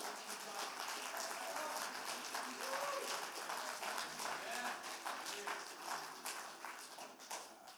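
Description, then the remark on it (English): A crowd claps steadily for several seconds in praise of God, a dense, sustained wash of applause with scattered louder hand claps, with some voices murmuring and calling out beneath it. “Can you give God one more hand clap of praise?”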